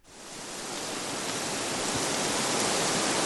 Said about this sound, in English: Wind and trees.